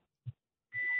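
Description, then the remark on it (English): A low thump, then a car's seatbelt warning tone, set off because a passenger has no seatbelt on, begins steady and high-pitched and holds unbroken to the end, heard in a caller's car during a call to Talk Radio 77 WABC. No one speaks. “One of my passengers doesn't have a seatbelt on.”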